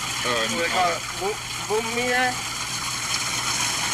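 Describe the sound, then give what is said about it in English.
Water pours steadily from a pipe in an alley as someone gets water, a constant, loud rush of flowing water, with voices murmuring briefly over it near the start. “It's coming out of a pipe in the alley. Getting the water.”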